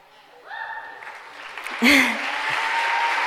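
Applause swells from a crowd after a quiet start, with some whoops, then a sharp loud burst of clapping before it settles into steady continuous applause.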